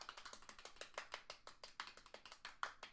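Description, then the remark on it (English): Soft, polite golf clapping: a steady run of light, crisp claps at an even quick pace for about three seconds, quiet overall with no voices; a golf clap given for wrestler Kiana James after she became the number one contender. “Golf clap for Kiana James, please,”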